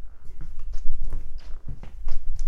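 Footsteps of a person walking straight across a floor to a chair and back, in a steady rhythm, each step a soft thud with a brief scuffing click, about eight paces in all.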